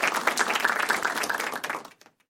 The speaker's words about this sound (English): Golf clap.